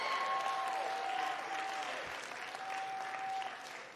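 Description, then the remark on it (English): An audience applauding, giving a last round of applause to God, a dense steady wash of clapping that fills the whole stretch at an even loudness, with a few faint high whistle-like tones threading through it. “Give God one last round of applause.”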